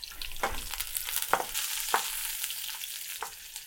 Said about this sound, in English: These ones in the pan that are frying are getting a little bit wrinkly. I'm a little worried they might get too rough, but we'll see what happens. In the meantime, it smells nice. It smells like frying plant matter, which is almost never a bad smell.